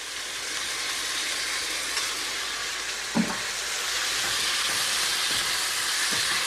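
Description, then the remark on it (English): Prepared sauce is poured from a bowl into a hot pan of chicken for nasi goreng and sizzles in a steady, bright hiss that holds for several seconds, broken by a few soft scraping knocks midway. No one speaks. “I'm going to pour that in and make sure you scrape every last bit of that sauce out of that bowl.”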